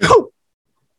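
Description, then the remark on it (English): A single quick, sharp sneeze bursts out, a breathy explosive burst lasting a fraction of a second, followed by silence. “Bless you.”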